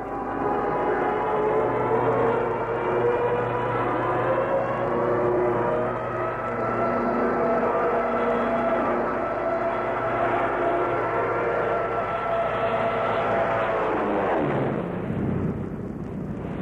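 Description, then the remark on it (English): A propeller airplane's engine drones loudly and steadily as it dives low over grass, its pitch swooping sharply downward near the end as it roars past. “Following our noise, he'll make some movement.”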